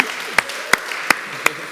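Audience applause: a steady wash of clapping with four sharp, loud claps standing out at an even, roughly regular pace. No one speaks.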